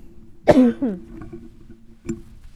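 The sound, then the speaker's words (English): A sharp, loud cough from a tickle in the throat bursts out, trailing into a raspy throaty rumble, followed by a second, softer short cough a moment later. No one speaks. “Sorry, I have a tickle in my throat.”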